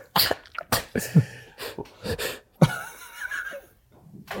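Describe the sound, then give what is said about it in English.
A run of several sharp sneezes from a person with dust in their nose, each a sudden breathy burst with quick intakes of breath between, coming in an uneven rhythm over a few seconds. “is that a fake sneeze? Are you fake sneezing?”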